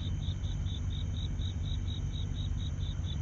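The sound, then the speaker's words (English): Crickets chirp steadily outdoors, heard through open studio windows, in a fast, even pulse of bright, high trills that repeats without pause over a low, constant background rumble. No one speaks. “I opened up my windows here to the studio, and I thought the crickets in the background would give a very good approach to this show here,”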